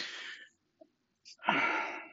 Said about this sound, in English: So my yawning isn't oxygen deprivation by any stretch. It's boredom. Like here I'm yawning again. Talk about being bored, and I start yawning.